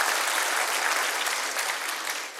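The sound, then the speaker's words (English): A church audience breaks into steady applause at a sermon's mention of Jesus rising from the grave, a dense, even wash of many hands clapping at the same level throughout, easing off slightly at the end, with no voices over it. “Yeah, go ahead, you can clap on that.”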